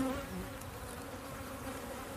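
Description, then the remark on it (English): A steady, dense buzzing of many bees around a hive, a continuous low drone with no pauses and no voices over it. “You don't want to stand in the front of a hive.”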